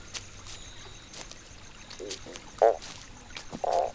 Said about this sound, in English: Oops. Did you just hear that fart? I'd normally say pardon me, but it definitely wasn't me.